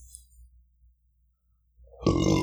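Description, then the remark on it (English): A single loud burp erupts suddenly after a near-silent stretch, rough and resonant, lasting about half a second at the end. “excuse me. And my burp.”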